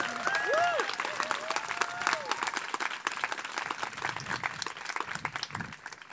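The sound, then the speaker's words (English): A crowd at an event breaks into steady applause for the organizing team, dense overlapping claps rolling on for several seconds, with a few brief whistles and faint voices threaded through early on before the clapping slowly thins. “So just one resounding hand of applause before I do some logistical things.”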